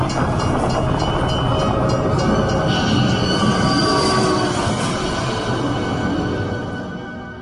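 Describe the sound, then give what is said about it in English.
A train roars along railroad tracks, a dense, heavy rumble with high metallic squealing from the wheels, holding steady before easing off slightly at the end. No voices. “Now he's about to pull into the train tracks while the train's coming and just get blasted by the train.”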